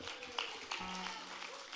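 An audience applauds, a dense, steady patter of many hands clapping throughout, fairly soft, with a low sustained hum entering partway through.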